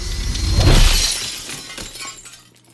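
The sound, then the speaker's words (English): A mirror struck by a hand shatters loudly, a sharp crash that bursts into a bright spray of breaking shards, then tinkles and rattles away into quiet over a couple of seconds. “Glass shattered, along with the illusion. I stared at the broken mirror, then at my hand, bloody and clenched.”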